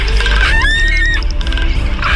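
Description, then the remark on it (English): Magnificent frigatebirds calling: a loud, nasal, warbling cry rises and wavers for about half a second over a rough, steady rumble of background noise, with fainter squawks before and after. “In a spectacular courtship display, male magnificent frigate birds gather in groups of varying size, their bright red throat sacs inflated, clattering their bills, waving their heads back and forth, quivering their wings, and calling to females”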